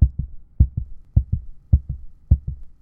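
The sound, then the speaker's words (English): A heavy, pounding heartbeat of a woman thumps in steady lub-dub pairs, beating harder and harder, five beats in quick succession, deep with no voices over it. “As our fingers touched, she gripped my hand and held it there, dead eyes burning into mine, mouth moving soundlessly, heart beating harder and harder, impossibly hard in her chest, in her fingertips.”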